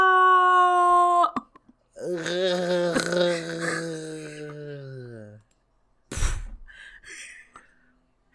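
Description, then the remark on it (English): A voice imitates the bunny Kiko falling and screaming in slow motion: a long, low, drawn-out wail that slowly sags in pitch, preceded by a brief steady tone and followed by a short breathy burst. “Kiko is falling and screaming in slow motion.”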